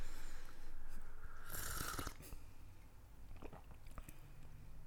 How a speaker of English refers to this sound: Why don't you go for that taste test? Take a little sip